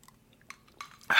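A quick sip of a drink: a few soft wet clicks and faint clinks, then a louder airy slurp at the very end. No one speaks.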